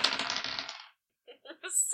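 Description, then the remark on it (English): Fairly loud clatter of dice tumbling across a hard table, a rattling burst that stops, then a few separate clicks and knocks as they bounce and settle. “Dice.”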